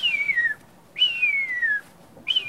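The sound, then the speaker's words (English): A person whistles an imitation of a buzzard's call: three clear, high descending mews, each gliding downward in pitch, the second longest, separated by short gaps and heard alone. “That's me doing a buzzard.”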